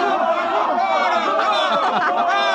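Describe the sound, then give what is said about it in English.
A dense crowd of many voices yelling and cheering together at a fiesta in a plaza under a clear dark sky, cheering for a papier-mâché bull running about chasing boys and laughing men; a steady loud roar of overlapping shouts with no single voice standing out, sustained throughout. “They're cheering for the bull.”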